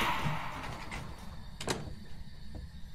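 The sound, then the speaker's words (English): A door rumbles as it slides along, then shuts with a single sharp thud partway through, followed by a low steady hum with no voices. “She tried to breathe down my neck and then close the door.”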